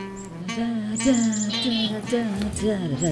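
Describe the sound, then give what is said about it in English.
A woman's phone alert tone imitating a chickadee call sounds in a few quick, chirpy whistled notes, clear, over a steady background of murmuring voices. “No, that was a chickadee. That was a chickadee. It sounds like a duck. That's her phone.”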